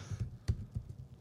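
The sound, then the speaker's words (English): Soft, irregular taps on a computer keyboard as someone types out a list of movie titles, with one sharper click standing out among the quieter keystrokes. No one talks, and the typing stays faint. “Thank God I spent all that time typing it out and fucking shit up.”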